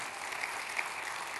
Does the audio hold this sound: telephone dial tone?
no